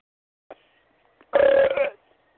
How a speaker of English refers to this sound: Hey, man, don't burp, brother.